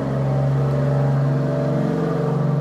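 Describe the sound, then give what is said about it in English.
A heavy engine rumbles steadily as a giant orange truck carrying a dumpster full of rocks rolls by, a deep droning vehicle sound holding loud and constant throughout with a slight pulsing throb. “There was a giant orange truck that rolled by with a dumpster full of rocks.”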